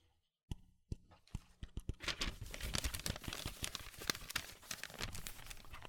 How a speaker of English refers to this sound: crumpled that paper for some reason, but I'll take it anyway.